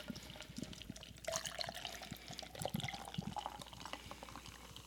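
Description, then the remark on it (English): Beer, which smells of blueberry, pouring steadily into a glass, a continuous bubbling, gurgling stream with fizzy crackles, moderately quiet, with no talking. “Mama had a good pour.”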